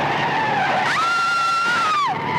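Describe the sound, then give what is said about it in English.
A car with its headlights on comes down the road with a loud, sustained tire screech that rises, holds steady for about a second, then drops away. No one speaks. “Then the shot cuts over not to Laura, but to a car coming down the road.”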